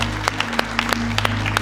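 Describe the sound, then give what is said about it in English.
An audience claps steadily in praise of the Lord at a church service in a reverberant room, many hands producing dense, overlapping applause with sharp individual claps standing out, over a low sustained organ-like hum. “Come on and give the Lord a hand clap of praise.”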